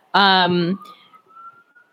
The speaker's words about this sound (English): For those of you, if you can hear the sirens, it's just the podcast. I apologize.